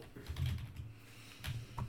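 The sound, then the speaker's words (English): Quiet typing on a computer keyboard while trying to search online for an internet speed test, a few soft key clicks in short irregular bursts with brief pauses between them and a low thud from the desk. No one speaks. “Like, the words aren't typing in?”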